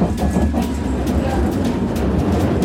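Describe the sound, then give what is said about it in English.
A London Underground tube train rumbles along steadily, heavy low-end roar with faint rhythmic clatter and occasional metallic squeals, heard from inside the train with no talking. “While we're on the train, I'm going to just hop in here for a couple of fun tube facts.”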